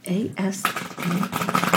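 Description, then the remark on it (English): Tarot cards being shuffled before a card is pulled, a dense, rapid papery riffle and crackle that runs for about a second after a brief stretch of someone talking, with voices still faintly underneath. “I'm not good at shuffling, so I like to hear other people.”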